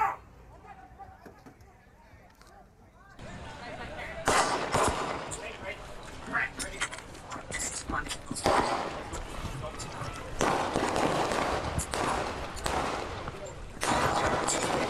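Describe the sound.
A rapid, chaotic stream of loud, sharp gunshots close by, cracking in dense bursts after a few quiet seconds, with indistinct voices faintly underneath.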